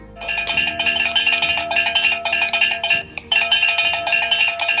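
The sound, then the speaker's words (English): A bell rung to start the next lap of a running race clangs rapidly and steadily, a loud, bright metallic ringing with quick repeated strikes, pausing briefly near the end before starting up again. No voices are heard. “Run. Rest. Eat. Then that bell.”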